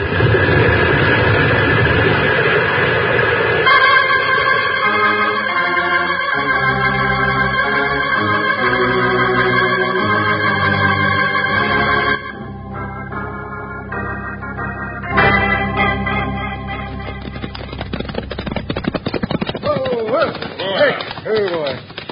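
A rock avalanche thunders down a mountainside, a loud, continuous low rumbling roar with crashing debris, mixed with dramatic orchestral music that swells and shifts throughout.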